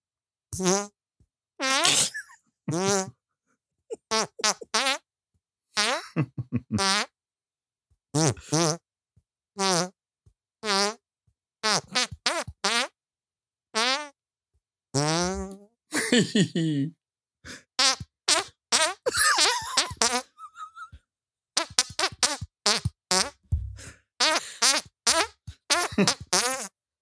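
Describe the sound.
A melody played entirely with hand farts: a quick run of squelchy, pitched blats rising and falling in rhythm, loud and close, with short pauses between phrases and no talking.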